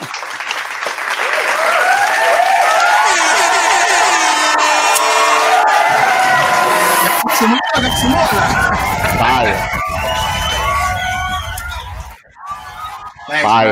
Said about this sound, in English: Yo, let's clap it up one time. That was fucking phenomenal.